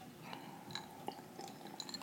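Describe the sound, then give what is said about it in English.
Several light, bright clinks of glasses touching in a toast, each with a short ringing tone, scattered over a couple of seconds against a quiet rustling background with no talking. “Can we just, like, clink to us?”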